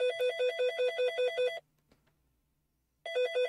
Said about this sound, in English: I think your phone's ringing.